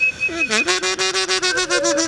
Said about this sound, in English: An Austrian jaw harp.